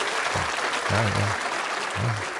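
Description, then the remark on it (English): A crowd claps steadily, a dense wash of many hands that fills the whole moment. A few low voices murmur briefly underneath. “You didn't have to clap.”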